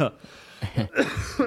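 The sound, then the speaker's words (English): A man coughs heavily in a few harsh, raspy bursts, with short breaths in between. “as he coughs up the lung.”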